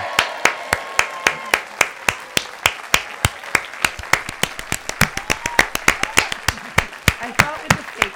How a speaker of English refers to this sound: Because there was the fake applause. That's the whole point of the fake applause.